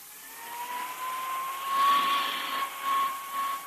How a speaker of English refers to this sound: what's the point of going over that coat with a hand vacuum?